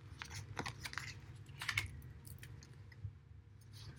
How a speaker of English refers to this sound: So let's give the cards a little bit of a shuffle, shall we? And then I will be pulling three from the top, unless one jumps out. All right, a little bit more of a shuffle, and here we go.